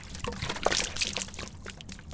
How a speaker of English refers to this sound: knock that water bottle over.